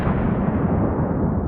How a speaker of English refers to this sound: And she screams out in pain, and an explosion follows.